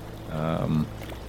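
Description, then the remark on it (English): A brief gush of water pouring off a lifted barrel, lasting under a second, with a hollow, resonant tone over a steady low background rumble. “but you hear these chains being wrapped and eventually you hear the as the water pours off of one of these barrels as it's being lifted.”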